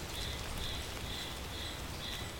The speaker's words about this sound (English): It was misty, it was drizzly, I had my rain jacket zipped up and my hiking boots on. And the only sound other than the dogs sniffing in the grass was the sound of the mud squelching beneath our hiking boots.